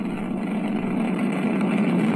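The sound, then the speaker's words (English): A steady, continuous engine roar, dense and rumbling with a broad hiss over it, holding constant loudness with no pauses and no voices: a rocket lifting off from a tropical rainforest site carrying the James Webb Space Telescope. “Décollage, liftoff from a tropical rainforest to the edge of time itself.”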